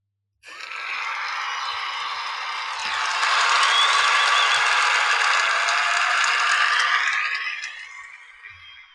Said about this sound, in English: Let me get the applause ready for that.